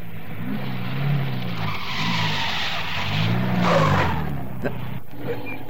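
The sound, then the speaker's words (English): Car tires screech in a drawn-out skid as a car quickly turns around on a road, with engine noise rumbling underneath and the squeal rising and falling for several seconds. “Turn around, quick.”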